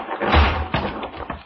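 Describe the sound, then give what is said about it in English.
A heavy crash with a deep, booming thud, followed by a couple of softer thumps and rustling as a dead tree, set as a trap resting on a cut living tree and released by a trigger branch, slams down onto the ground. “The dead tree, delicately adjusted to rest on the cut living one, crashed heavily to the earth.”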